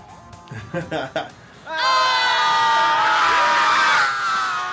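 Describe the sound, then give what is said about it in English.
A few short shouts give way to a crowd screaming loudly and continuously, a dense wall of high-pitched overlapping voices sustained for several seconds, energetic, at the Sunset Strip premiere of the documentary film Still Screaming around Halloween. “Let's get our scream on.”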